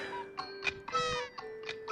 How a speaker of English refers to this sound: All the cuckoo clocks are going off, and he goes, I wonder what time it is.